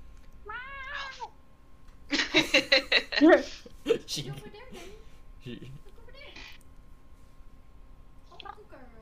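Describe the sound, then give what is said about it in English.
A cat meows with a rising, wavering cry, then lets out a loud, pulsing yowl lasting about a second, followed by people talking while faint cat sounds continue. “There's a cat in the background.”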